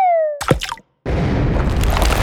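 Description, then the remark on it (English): A falling whistle drops in pitch, then a few thudding impacts, a short silence, and a loud, steady rumbling crash as a human head lands in a ravine. “We hear the sound of a human head landing in a ravine.”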